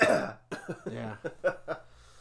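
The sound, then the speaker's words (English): A loud cough at the start from a person with a lingering cold, followed by a run of rough throat-clearing hacks and smaller coughs in quick succession, with no talking. “And I still have a cough.”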